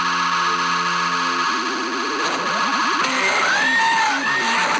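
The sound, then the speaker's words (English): A loud, continuous video game charge beam effect: layered electronic tones hum steadily, then begin to warble and pulse, breaking into chirping, sweeping synthetic bleeps toward the end. “No, it's really funny to have the charge beam sound effect in there.”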